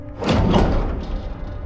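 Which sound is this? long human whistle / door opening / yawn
door opening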